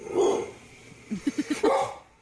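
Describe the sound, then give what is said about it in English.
A dog that is afraid of a pineapple growls and barks at it: a loud bark followed by a quick run of four short, sharp yaps and another forceful bark, with a low, tense growly edge. “That was the intense growl, too.”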